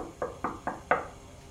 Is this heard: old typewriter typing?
no